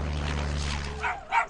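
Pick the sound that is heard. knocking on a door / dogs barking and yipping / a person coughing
dogs barking and yipping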